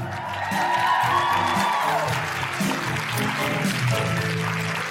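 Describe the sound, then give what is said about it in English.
A large audience at a live Guilty Feminist show in Canberra, Australian Capital Territory, applauds steadily, dense clapping mixed with scattered cheers and whoops, sustained at a fairly loud level throughout without pause. “Can I have a big round of applause for those phenomenal women that you will be seeing a lot more of later?”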